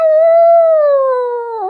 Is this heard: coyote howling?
yes